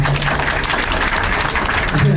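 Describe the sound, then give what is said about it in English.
A short, polite round of applause from a small group, steady and moderately loud, with a low hum underneath and a hint of voices. “nice polite ball of applause.”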